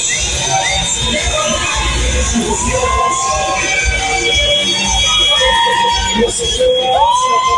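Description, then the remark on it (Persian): A dense street crowd in Nazi Abad, Tehran, Iran, celebrates loudly after Iran's national team lost to the United States, with overlapping shouts and cheers, whistles and rising whoops, and car horns honking throughout, a constant festive din with no pauses. “یعنی نازی آباد بعد باخت تیم ملی خوشحالی کرده، میدونی یعنی چی؟”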